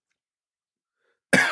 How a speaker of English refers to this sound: Slurping and coughing